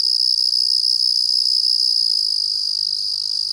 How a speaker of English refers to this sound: This is the trill of one of the most common crickets, the Carolina ground cricket. It's small, about a third of an inch long, and cold-hardy, and you'd find it hard to confuse its song with the two-part trills of this one.